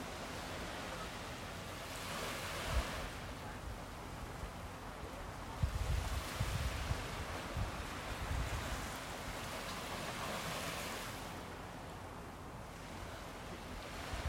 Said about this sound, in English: Settle in with the sounds even around the wave, sometimes of wind or boats. Just letting the sounds flow in and flow out. Notice your breath. Sometimes sinking the rhythm of the waves. Sometimes very different. Moving together, sometimes apart.